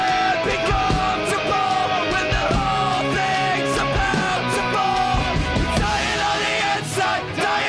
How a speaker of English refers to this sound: Oh, okay, so we've got a trumpet player here, which reminds me, were there horns on this album? I swear there are songs where I hear horns.